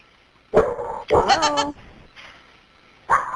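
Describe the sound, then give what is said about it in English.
A dog left home alone barks over a 911 emergency call placed from its owner's cell phone: three sharp, fairly loud barks, the middle one longer and more drawn-out, separated by quiet pauses with thin, band-limited background hiss. “So the dog was hitting 911 on its iPhone, calling 911.”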